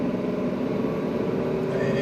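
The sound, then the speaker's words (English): A Cummins engine accelerates smoothly as the driver punches it on a track, speed passing 60, 70 and 80. A steady low hum and road roar with an engine tone climbing gradually in pitch. The sound stays even in loudness throughout, with no talking. “I mean, it's you can hear, it's solid, it's quiet, smooth. Power comes on smoothly, like I'm punching it right now.”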